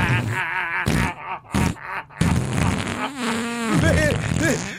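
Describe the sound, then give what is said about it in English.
A voice does a drawn-out imitation of a fart, a series of loud, buzzing, sputtering blasts with wobbling, groaning pitch over about five seconds. “Make a sleep video with a little fart noise as it goes.”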